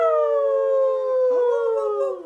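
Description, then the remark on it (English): People imitate a wolf howl: one long, steady, slowly falling howl, then a second voice joins with a rising howl, both overlapping loudly. “I'm going to get you to do some howls with me this time.”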